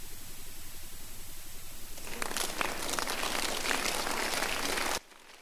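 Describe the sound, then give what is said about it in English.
A low steady hum gives way to a burst of audience clapping at a church, a dense crackly patter of many hands that holds at an even level for about three seconds before cutting off abruptly. “And even though, stop clapping, let me give it to you.”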